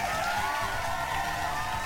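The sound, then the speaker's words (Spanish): Steady, dense applause from a group, a continuous wash of many overlapping claps at an even loudness for about two seconds, with no voices. “Y un aplauso nuevamente para todos mis Patreons.”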